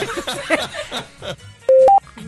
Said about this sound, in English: What's that? Wow. Either there was a bell ringing or I'm dying. One of the two. Yeah, did an angel just get its wings?